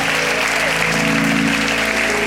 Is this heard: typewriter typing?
no